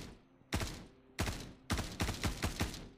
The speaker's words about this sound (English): Here, yeah, we're being shot at. Gunshots.